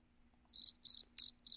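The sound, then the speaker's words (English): Cricket chirping alone, four quick trilling bursts at a steady rhythm, each a shrill pulsed chirp repeated in even succession against an otherwise quiet background. “No, there's no crickets”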